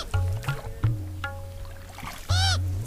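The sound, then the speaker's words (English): Oars work a boat loaded with food and gear along the Green River through a deep canyon, with low thumping strokes, wooden creaks and knocks, and a sharp squeaky creak near the end. The sounds are fairly loud, with no talking. “Sleep past dawn, break camp, ravens outraged that we leave nothing, load the boats, the food, the gear, the gin, and row, row, row your boat gently down the stream.”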